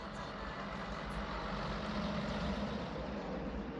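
A bus waiting in town idles with a steady, rumbling diesel drone, continuous and fairly loud throughout, with a faint hiss of air in the background and no voices.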